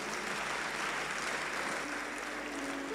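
An audience at a Christian broadcast claps steadily for about three seconds after a guest has shared a story, a dense, even wash of many hands at a fairly soft level, with no voices over it.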